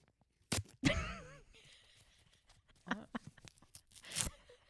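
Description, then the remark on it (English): A stiff hard-paper tampon wrapper being torn open: sharp crackling rips and crinkles come in several uneven bursts, with a loud tear near the start and another toward the end. “But then the worst part is it's not like a nice plastic opening one. Like, you can just sort of gently, like, quietly open it. It's like hard paper.”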